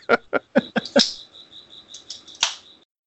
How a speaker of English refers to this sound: And it will actually bring a real slice of life to the term crickets.